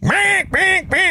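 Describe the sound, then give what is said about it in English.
Three loud, nasal quacks blown on a duck call in quick succession from a car window at a traffic light, each a drawn-out buzzy honk, with no talking. “and when we would get to a light somewhere and somebody's got that ba-boom, ba-boom, ba-boom going, I would just roll down my window, and between ba-booms, I'd lay out a big bunch of duck calling.”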